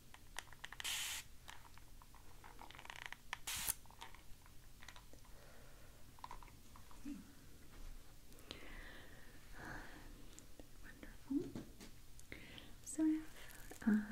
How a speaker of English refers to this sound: Okay, so I might do a little bit of spraying before I comb your hair a bit more.